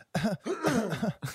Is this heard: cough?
yes